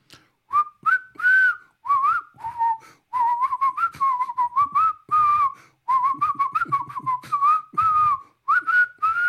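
A person whistles a lively theme song, a quick run of short, bright notes in bursts with brief pauses between phrases.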